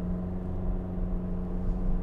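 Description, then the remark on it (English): Steady low rumble of road noise inside a moving car, a constant engine hum and tire drone filling the cabin with no voices. “Whatever, you're in the car with me.”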